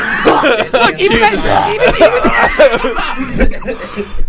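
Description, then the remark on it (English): A few short, harsh coughs break out amid chuckling and snickering, with voices overlapping in a lively, noisy exchange. “Even that cough is trying to get its shit back.”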